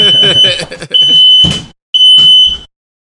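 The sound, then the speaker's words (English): A smoke detector sounds a shrill, high-pitched alarm in repeated beeps of uneven length, loud, with people talking over the first half; it was set off by someone blowing directly at the detector. “I think she blew directly at the smoke detector.”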